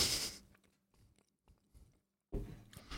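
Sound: people chewing food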